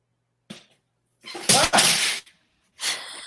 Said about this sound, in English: What was that? No. I dropped my board and I tried to reach for it and I smacked it into the ground instead of grabbing it.